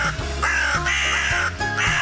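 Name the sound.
crow cawing sound effect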